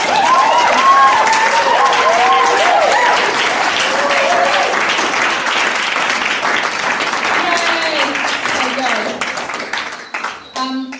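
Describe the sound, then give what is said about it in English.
A crowd applauds at the end of Vision Sunday Chats with steady, dense clapping and scattered cheers and whoops rising above it, the applause thinning out near the end as a few voices carry on. “Yeah, and it's like, whoo, clap, clap.”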